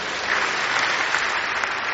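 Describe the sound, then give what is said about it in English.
A crowd applauds steadily for Jesus Christ, a dense wash of many hands clapping at an even, fairly loud level throughout, with no voices standing out. “Clap for Jesus Christ.”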